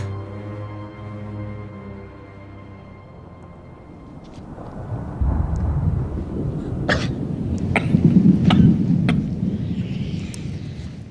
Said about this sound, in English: So I guess he has, like, baby lungs. And he's just, like, coughing up a storm. He sounds like a pappy before we clean up the tracks.